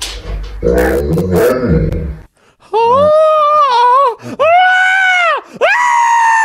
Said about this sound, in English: so we fully appreciate a talking dog